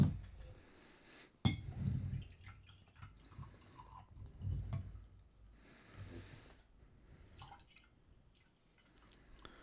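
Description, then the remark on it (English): A glass bottle of homebrewed extra special bitter beer is opened while held against the microphone, with a sharp click near the start followed by low rumbling handling noise, faint liquid fizz and occasional small clinks. “Let's open it. Hold it against the microphone?”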